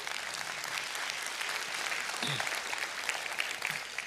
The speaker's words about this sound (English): So if everybody who just stood would give a round of applause.